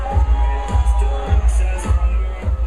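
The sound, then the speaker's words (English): A dense crowd of South Beach clubbers at a Buick event revealing the Buick Regal GS murmurs and calls out over a steady, thumping dance beat, the low kick pulsing about twice a second beneath the busy, loud chatter. “This crowd of South Beach clubbers really seemed to like what they saw, which is exactly what Buick's trying to do with these Regal Remix events.”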